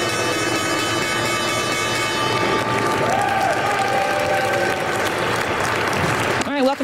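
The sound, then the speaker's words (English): The New York Stock Exchange opening bell rings steadily for several seconds over a dense wash of applause and crowd cheering, then cuts off as a voice comes in at the very end. “That was the opening bell there.”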